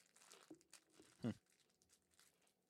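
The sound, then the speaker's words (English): Quiet crinkling of a candy wrapper in scattered bursts, with one louder crunchy rustle midway, as someone fiddles with the plastic packaging while munching on candy. “I'm munching on some candy.”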